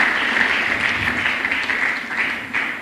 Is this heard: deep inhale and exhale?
no